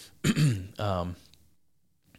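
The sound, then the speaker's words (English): A person who is a little under the weather clears their throat in two short voiced bursts, one right after the other, followed by quiet and a faint click. “forgive me for clearing my throat, you guys, I'm also a little under the weather.”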